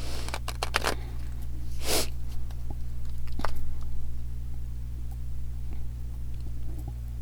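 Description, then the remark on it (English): A quick sniffle through the nose in the middle of a quiet stretch of light clicks and rustling over a steady low hum. No one speaks. “Okay, my nose has immediately started getting like sniffly, which happens.”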